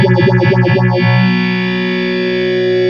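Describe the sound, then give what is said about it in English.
A steady, harmonically rich tone is swept by a phaser whose notches rise and fall quickly at first, then slow and fade to an almost static drone as the rate knob is turned counterclockwise while it runs. “I just turned the rate knob while it was running.”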